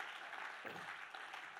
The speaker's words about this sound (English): So can we put our hands together? And even as they take their seats, can we just put a round of applause for these amazing people?